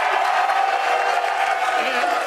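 A large crowd roars and cheers continuously, a dense, steady wash of voices and clapping that stays loud and unbroken throughout, with no single voice standing out.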